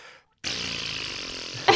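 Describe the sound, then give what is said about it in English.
Someone vocally imitates air escaping a balloon: after a short pause, a steady, buzzy, hissing sputter runs for over a second, with a brief louder burst at the end. “I had written sound of air escaping a balloon.”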